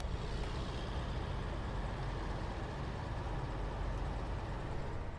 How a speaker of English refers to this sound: Oh, yeah. Listen to those trucks.